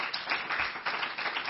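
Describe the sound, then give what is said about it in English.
An audience at Faith and Truth Assembly clapping hands unto the Lord after testimonies, a dense, steady patter of many overlapping claps at moderate loudness, with no one speaking over it. “Go ahead and clap your hands unto the Lord.”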